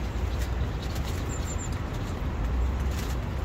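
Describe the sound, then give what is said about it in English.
Steady, dense outdoor wind roars continuously with a heavy low rumble, loud with no letup, and a few faint high chirps briefly break through near the middle. “I think we're just about to get a big wind, so I've put it back on the record. You can hear it roaring.”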